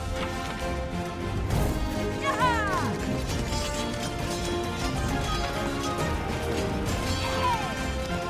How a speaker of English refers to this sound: Wow! The sword fight! Whoa, there's knights and horses, too! I can almost see it.